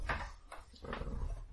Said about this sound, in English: So we shut the door behind us.